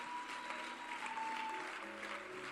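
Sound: audience clapping hands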